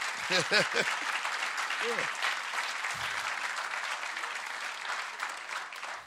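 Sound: audience clapping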